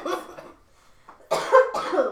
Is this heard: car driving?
no